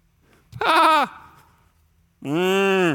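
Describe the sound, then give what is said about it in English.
Two loud sheep bleats with a wavering, nasal quality: a short one, a pause, then a longer drawn-out bleat that runs to the end, with no talking. “Oh, that's just some of the leftover sheep and cattle.”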